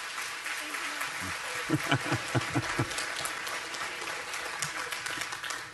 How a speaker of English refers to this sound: Let's give our guests a round of applause as they return to their seats.